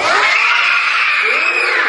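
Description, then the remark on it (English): A group of children roar and shriek together in imitation of dinosaurs, trying to scare a rabbit into disappearing during a disappearing-rabbit trick; a loud, sustained, high-pitched wall of voices lasting about two seconds without a break. “Dinosaur noises.”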